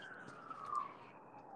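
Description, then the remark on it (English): A faint emergency vehicle siren wails, its steady tone drifting slowly downward over a quiet background hiss, with no one speaking. “Is the sirens going off too loud? I can hear them, but it's very faint.”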